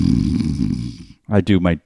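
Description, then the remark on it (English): A person does a loud, drawn-out mock snore, a rough rattling rumble lasting about a second, then after a short pause makes a brief voiced sound. “I do my dirty talking in between my snores.”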